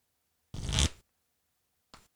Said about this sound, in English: I'm going to go ahead and shuffle my cards.